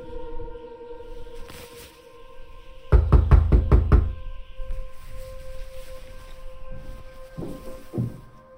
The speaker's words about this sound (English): It was Gregory James Haler who walked up to the front door and knocked. And it was Pendleton Papa Wampok who answered.